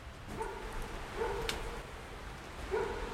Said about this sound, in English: Oh, I hear the neighbor's dog barking.